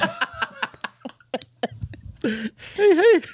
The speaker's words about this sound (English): Still coughing. Oh, jeez.